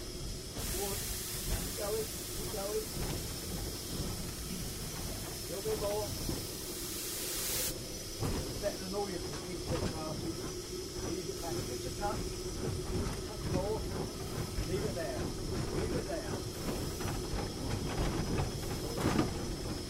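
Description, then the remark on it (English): A steam train engine hisses loudly with a steady rush of steam, then keeps laboring with a low continuous rumble and irregular chuffing bursts as it strains to start moving on a hill. “Starting on a hill is not the easiest thing to do. Not in this engine, sir.”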